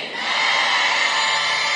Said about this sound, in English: In Jesus' name I have prayed. And everybody shouted, amen. Amen.